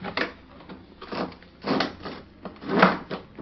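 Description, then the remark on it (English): A window slides open with a series of rough wooden scrapes and thumps, four or five grinding pushes, moderately loud, no voices. “Open that window”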